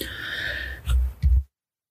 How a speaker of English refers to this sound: It's a little cough there. It's dusty in here. It's dry.